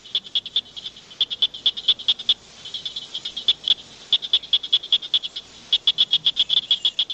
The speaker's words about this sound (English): I hear cricket frogs in the background. Yep, Java brought in the cricket frogs there, but that's a recognizable sound for those of us in Mississippi. Let's listen for just a minute.